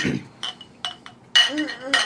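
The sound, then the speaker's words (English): Several bright glass clinks in quick, uneven succession, the last few ringing briefly as glasses of a hoppy 7% ABV beer touch in a toast, with a faint murmur of voices around them. “Okay, cheers.”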